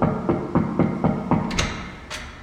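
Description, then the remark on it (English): The office door of National American Radio's archivist, in the Lala Plaza basement, opens: a quick run of even, rhythmic low creaks or thuds, then a few sharp metallic latch clicks, with no voices. “I've also come down to record the sound of his door, for completists.”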